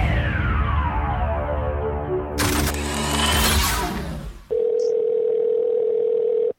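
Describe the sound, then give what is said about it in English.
A phone call to a Spirit Halloween store in Chesterfield rings out: after a burst of harsh, noisy electronic tones, a single steady ringback tone drones loudly for about two seconds, with no one talking. “The phone is ringing.”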